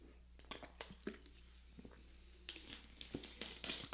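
Someone drinks Poland Springs sparkling water with a twist of lime: scattered sharp clicks and taps of a bottle being handled, soft fizzy crackling, and a few small sipping sounds, all fairly quiet with no talking.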